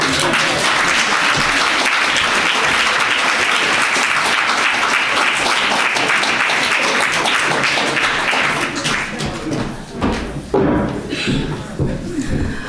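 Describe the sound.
A crowd applauds with dense, steady clapping that holds strong for about nine seconds, then thins out and fades, with a few scattered claps and a voice starting to talk at the end.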